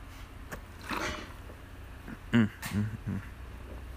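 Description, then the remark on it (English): Someone drinks water, a few soft swallowing gulps spaced about a third of a second apart, with quiet breaths and sniffs around them and no talking. “I'm drinking water.”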